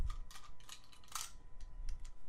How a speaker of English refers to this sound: We can cut this. I mean, we're not going to cut this. We're rolling the dice. It's a 3.